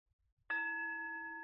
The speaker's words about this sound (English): If you could please ring the bell.